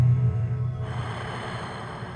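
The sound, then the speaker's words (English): A slow, deep breath drawn in through the nose during a guided breathing exercise, a soft airy rush that starts after a brief pause and continues steadily for over a second, fairly quiet, with no talking. “Breathing in fresh, breathing out thoughts gone, stress gone.”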